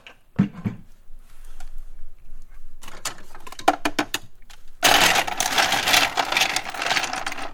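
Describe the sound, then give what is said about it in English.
Ice cubes clatter and rattle in the freezer of a fridge, starting with a few sharp clinks, then a looser jostling, and finally a loud, sustained rush of ice shifting and tumbling. “This is my ice.”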